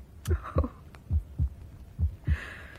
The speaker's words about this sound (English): Listen to the silence. What's that? Oh. How silly of me. My own heartbeat.